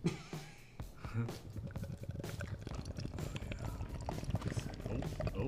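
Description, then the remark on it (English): Beer from a brim-full can from Czechia glugs and splashes steadily into a glass for several seconds, a continuous gurgling pour with fizzing bubbles, while people talk faintly in the background. “I'm also pouring first.”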